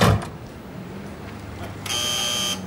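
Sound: door opening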